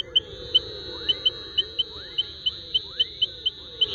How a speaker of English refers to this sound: So, it sounded like a small frog.